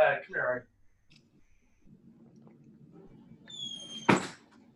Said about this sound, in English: I'm going to close the door real quick because there's a drum circle now next door.